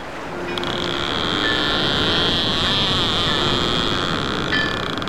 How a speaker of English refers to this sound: That's a fishing boat.